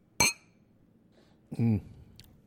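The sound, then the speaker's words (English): A single bright clink of beer glasses touching in a toast, sharp with a short ringing tail, followed a moment later by a brief spoken voice. “well, cheers first. Cheers.”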